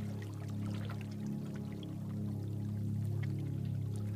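Soft, steady water sounds with scattered small splashes and trickles, a continuous gentle wash of water lapping against a rocky shore, with no voices.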